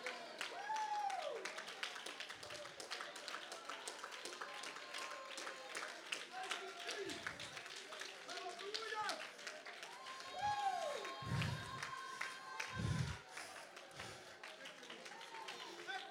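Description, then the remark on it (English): An audience claps steadily and shouts in praise to God, rejoicing in victory, with loud overlapping cheers and voices rising and falling over a dense, continuous wash of clapping that lasts throughout. “Come on, we're rejoicing and we're shouting.”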